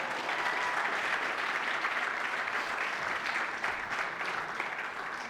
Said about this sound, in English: Everybody turn around and give Mikey a round of applause.